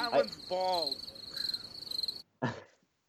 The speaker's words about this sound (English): Cricket.